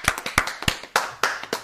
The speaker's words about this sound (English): So congrats to him. Absolutely. Golf clap, everybody.